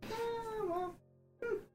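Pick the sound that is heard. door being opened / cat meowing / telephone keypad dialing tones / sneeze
cat meowing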